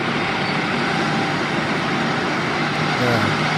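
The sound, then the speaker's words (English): A John Deere tractor engine runs at a steady, loud idle, its low throbbing rumble holding even throughout with a broad mechanical roar and no changes in pitch. “Yeah, that's a John Deere, no doubt.”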